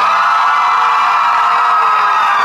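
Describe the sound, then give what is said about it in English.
A large live audience screams and cheers in a loud, sustained roar that fills the whole stretch, dense and continuous with no talking over it. “I think you guys need to scream a little louder for the podcast.”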